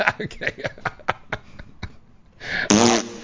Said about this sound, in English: Oh my god, it sounds like my pussy farting.